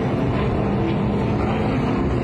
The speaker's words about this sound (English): I think these are the super late model cars. The cars just rip around the track at like 100 miles an hour. It's absolutely awesome.